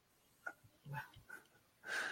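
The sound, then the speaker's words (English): A dog, a very loud snorter lying right under the speaker's feet, snorts and wheezes in a few short, uneven bursts, then lets out a louder, raspy hacking cough at the end, with no one talking. “I don't know if you can hear my dog.”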